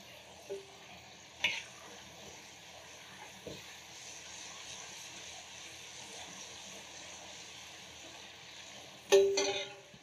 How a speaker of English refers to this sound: We're gonna put our lamb in, just gonna give it a quick fry. And while that's frying, we're gonna start off with our Panang curry, a little bit of oil.